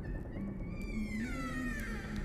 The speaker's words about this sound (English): Sounds like a door just opened somewhere.